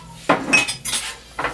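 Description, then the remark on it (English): A metal spoon scrapes and clinks against a jar in three quick bursts, with wet, soft squelching as food is scooped out onto a paper towel for building a pizza; no one speaks. “I'm gonna spoon some out.”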